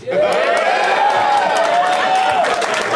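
A crowd cheers loudly and steadily for about three seconds, with scattered clapping and one long, rising whoop carrying above the roar before it cuts off, in response to the spoken answer "Three Amigos".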